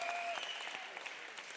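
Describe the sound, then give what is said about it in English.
A crowd claps together in a steady, dense patter of many hands at moderate loudness, with a thin high tone lingering briefly at the start. “No, that's not a clap.”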